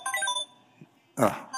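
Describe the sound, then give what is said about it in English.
A phone ringtone plays a short electronic melody of bright, steady tones during a talk at Life Church, goes quiet for a moment, then sounds again more loudly with a fuller burst. “Whose phone is that?”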